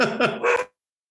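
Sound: dachshund barking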